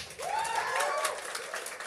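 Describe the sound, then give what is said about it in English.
A short burst of audience clapping, a steady patter of many hands at moderate level, with a rising-and-falling vocal whoop riding over it near the start. “We didn't need to clap them.”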